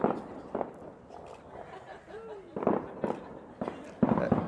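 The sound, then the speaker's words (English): Fireworks go off outside in a loose, irregular series of muffled bangs and crackles, some close together, over a steady low background rumble. “It's the fireworks committee.”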